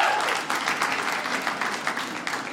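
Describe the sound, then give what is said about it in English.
An audience claps steadily in answer to a call to clap if they are the clean one among people who live together, a dense patter of many hands at fairly constant loudness with brief surges, and no voices standing out above it. “Clap if you're the clean one tonight.”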